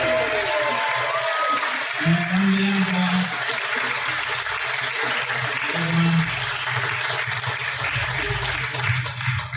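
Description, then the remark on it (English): At a barbecue competition results announcement, a crowd applauds steadily for several seconds for third-place team Big Shanks and Smokin Sales Barbecue, a dense wash of clapping that stays loud throughout, with a few brief low tones or shouts rising above it. “But in third place, big, big round of applause for Big Shanks and Smokin Sales Barbecue.”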